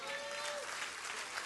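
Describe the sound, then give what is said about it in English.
An audience claps steadily, a dense, even wash of many hands that fills the whole moment, with a faint sustained tone fading out early beneath it. “Come on, clap your hands all over the house.”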